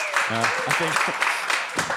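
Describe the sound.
A crowd claps steadily in a dense, continuous patter as a vote for "Man Bun Ken", with cheers and whoops rising over it and voices calling out through the applause.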